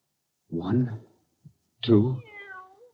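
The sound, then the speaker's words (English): A cat meows twice, a short cry followed after a brief pause by a longer, drawn-out meow that trails off with a wavering tail. “1, 2, 3, 4 cats with their heads cut off. And another one. Alive.”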